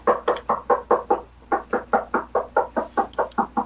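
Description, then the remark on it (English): Rapid, steady knocking, like hammering or banging on wood, about fifteen evenly spaced thuds with one brief pause, moderately loud and somewhat muffled as if coming through a wall. No voices. “My next door neighbor. a new building fucking table or something?”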